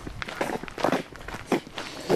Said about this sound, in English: But, no, there's some nice footpaths down this valley, so... Yeah, it's a nice time. Listen to our shoes crunch.